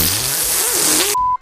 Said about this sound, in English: Why'd you just fart into the microphone there? I didn't. I said I think you might want to check your underwear.